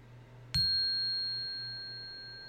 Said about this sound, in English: And I can show you an example. I've got a chime in here right now of just how that tone is. So this is just one of my favorites.